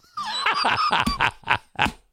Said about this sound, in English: Oh, fuck, sheep.